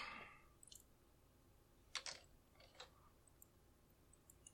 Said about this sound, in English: Let's roll some dice.